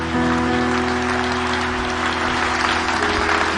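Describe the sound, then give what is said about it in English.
Steady applause from a crowd fills the whole stretch, many hands clapping densely and continuously at a fairly loud, even level, with no voices standing out. “That moment when people clap hands, where they don't know what they're doing, whether it's acceptable or perfect.”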